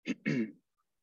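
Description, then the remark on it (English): A short burst of throat clearing during a mild coughing fit: a brief rasp followed by a longer, rougher clearing sound, then quiet. No talking. “Sorry, I'm just having a mild coughing fit.”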